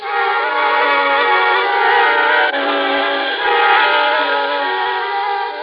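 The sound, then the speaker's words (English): A train heading down to New York rolls along steadily, its loud, continuous drone carrying layered humming tones without a break. There is no talking over it. “then a train down to New York.”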